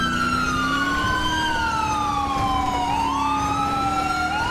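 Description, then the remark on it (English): A police car siren wails loudly, its pitch sliding slowly up and down without a break, over a low, steady engine rumble. “Sirens low.”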